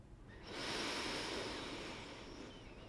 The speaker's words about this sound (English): Let's take one more deep breath together before this last card. Breathing in.